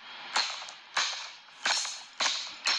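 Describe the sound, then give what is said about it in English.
A hard hammer smashes down on a broken Sonicare electric toothbrush lying on a hard, flat surface five times at a steady pace, each sharp, loud crack followed by a brief rattling decay, with no voices. “Is he smashing with a hammer?”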